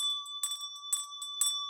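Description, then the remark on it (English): A bell rings with a steady, sustained tone, struck or shaken in three jangling bursts about half a second apart. It is clear, with no voices. “That's just Christmas in a nutshell, isn't it, that bell?”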